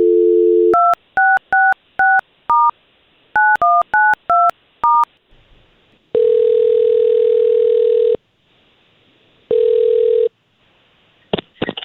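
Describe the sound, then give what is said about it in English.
A dial tone gives way to a quick series of touch-tone telephone keypad beeps, two bursts of dialing a woman's phone number, followed by long ringback tones and a click as the call connects. Clear, no talking. “Well, we have her phone number here. Let's see if we can't call her now and we'll talk to her first.”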